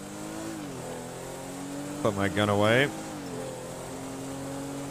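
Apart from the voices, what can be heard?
car accelerating away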